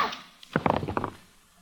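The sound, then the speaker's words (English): Dice are rolled in a dice game and clatter onto a table in a quick burst of sharp little knocks and thunks, bouncing a few times before settling into quiet, coming up a natural seven. “And then Bates rolls.”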